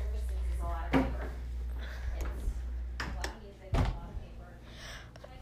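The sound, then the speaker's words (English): The door of a den swings and shuts: a sharp knock near the start, then a heavier thud a few seconds later, with rustling movement and a low steady hum between them. “Okay, the den looks fine. Let me shut the door.”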